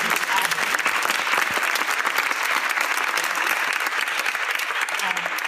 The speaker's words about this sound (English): Well, thank you all very much. Let's give another warm round of applause.